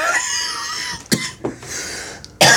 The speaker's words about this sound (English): Excuse me while I die for a second. I have a weird cough. That's not good. Yeah, it's been going on for like 3 weeks, and it's literally just a cough and no other symptoms.